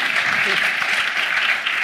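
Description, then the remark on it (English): An audience claps steadily, a dense, even wash of many hands with no pauses or swells, holding at a fairly loud level for the whole moment. “You have to say nice things about them. And they clap.”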